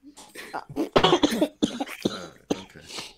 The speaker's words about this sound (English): Okay. That's why you started coughing. That's why you started coughing, bro.